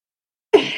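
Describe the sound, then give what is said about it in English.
A single rough cough or throat-clearing from a dry throat bursts out after a moment of silence, fairly loud, with a raspy, dry texture that runs to the end. “I don't know why my throat is so dry today.”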